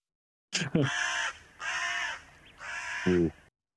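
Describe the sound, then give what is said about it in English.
A crow caws three times in a steady sequence, each call harsh, raspy and drawn out, loud, with short pauses between them. “Also, I have a crow.”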